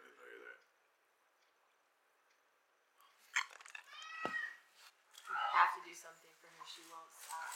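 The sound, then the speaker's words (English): A cat meows a few times in close succession, clear, with drawn-out whining cries after a brief quiet stretch; faint voices may murmur in the background. “It's like, ah, right, there's a cat always meowing.”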